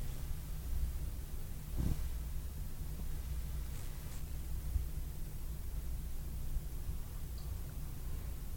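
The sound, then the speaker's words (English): A steady, low mechanical hum from a boiler system drones continuously with a faint hiss of background noise over it, with a brief soft thump partway through. “Besides the hum of the boiler system, I heard a voice.”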